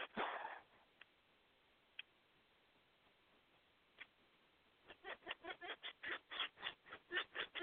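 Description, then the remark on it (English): A pet bird lets out a quick run of short, chuckling calls, repeated in a steady rhythm like laughter, after a few isolated soft clicks. Clear, with no talking. “Bird's laughing in the background.”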